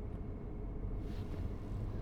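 A steady, low engine and road rumble from inside a Lyft car driving in traffic from Staten Island back to Manhattan, continuous and fairly quiet with no voices.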